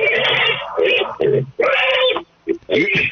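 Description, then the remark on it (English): A spinning children's toy made for 5-year-olds, held up to a phone, plays farm animal sounds such as a cow and a pig: several loud, voiced bursts that moan and warble like animal cries, separated by short pauses, with no other sound behind them. “I imagine that you are basically just spinning the toy given to 5-year-olds on saying, here's what the cow says.”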